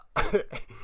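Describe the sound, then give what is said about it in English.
A quick series of harsh coughs, roughly three bursts in under a second, with a rough throat-clearing quality and no talking. “I thought I was going to make it through without coughing.”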